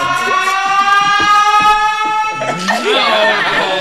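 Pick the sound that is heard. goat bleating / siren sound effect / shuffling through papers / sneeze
siren sound effect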